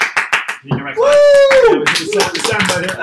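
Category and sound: crowd, clapping and cheering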